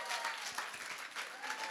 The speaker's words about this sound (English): Come on, somebody give the Lord a hand clap tonight. Woohoo.